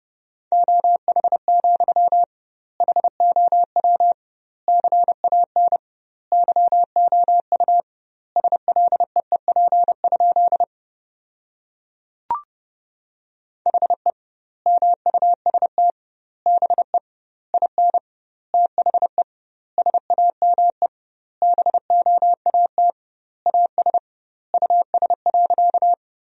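Rapid Morse code at 30 words per minute, sending sentences built from the 500 most common words with doubled word spacing, as a steady mid-high beeping tone, quick dots and dashes grouped into word-length bursts separated by short gaps, with a brief click midway and no voices.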